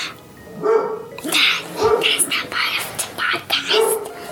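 A dog named Izzy barks up above, repeatedly in short, sharp bursts spaced irregularly across a few seconds, sounding somewhat muffled.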